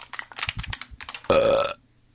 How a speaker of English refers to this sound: Give you a preemptive burp. Yeah, I was going to say, like, you should have timed that just a little bit closer to the... You don't hold them back. When they come, they come. That's just how it works.